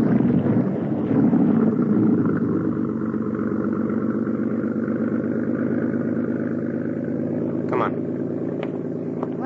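A motorboat engine pulls away with a steady, low throbbing drone that holds for several seconds, easing slightly in level, with a brief clattering knock near the end.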